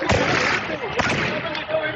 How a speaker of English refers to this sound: But then, this happened. Panic sweeps the crowd, then gunshots ring out.